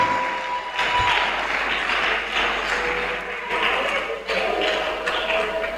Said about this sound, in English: Clap for her.